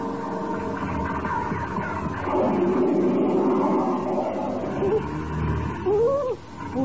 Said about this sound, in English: The plane, they're diving down. Yeah, two jet fighters, Russian-built MiGs.